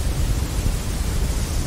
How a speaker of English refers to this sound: So I've got white noise here if you haven't heard it.